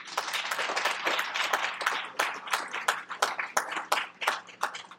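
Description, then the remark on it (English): An audience applauds itself for the effort of all involved, with dense, steady clapping that holds for several seconds, many hands overlapping into a bright, crackling wash with sharper individual claps standing out toward the end. “So let's give yourselves a round of applause.”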